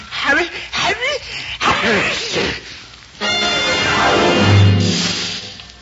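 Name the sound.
sneeze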